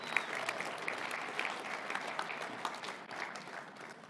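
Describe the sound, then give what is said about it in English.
A church audience applauds the fathers on Father's Day, dense overlapping claps filling about four seconds at an even level, easing slightly toward the end with no one speaking. “Can we give a round of applause for our fathers?”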